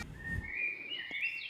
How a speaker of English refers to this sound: Here, we'll have some lively birds.